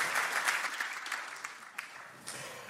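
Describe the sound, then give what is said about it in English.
An audience applauds a woman coming up to share, with dense, steady clapping that stays fairly even before gradually thinning out, a few sharper claps standing out near the end. “And come on, give her another round of applause and smile.”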